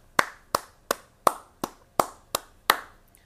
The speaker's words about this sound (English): Congratulations, our first ever award winners here on the State of Southeastern. One more round of applause for them.